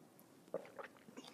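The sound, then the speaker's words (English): A quiet sip of coffee: a few soft slurping and mouth sounds, ending in a sudden louder burst. “And join me now for the unparalleled pleasure, the dopamine hit of the day, the thing that makes everything better, the simultaneous sip.”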